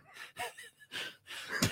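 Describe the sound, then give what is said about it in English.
A person gasps in sharply several times, deep noisy inhales in quick succession, loud, mimicking breathing in Glen 20 spray sprayed through gym air conditioning vents. The last breath is the harshest. “Just breathing in.”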